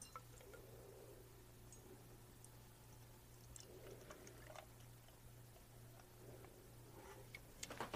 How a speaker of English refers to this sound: Hop, Drop, and Roll is currently ranked at number 33 in the American IPA category on Beer Advocate, so I'm not the only one who thinks it's a great beer. And get a pour of this rascal here.